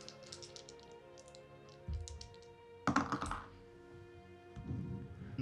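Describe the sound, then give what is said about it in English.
Two six-sided dice rattle and clatter across a tabletop in a quick burst of sharp clicks, followed by a brief louder tumble as they settle, landing on a 5 and a 1. No one speaks. “All right, roll a d6.”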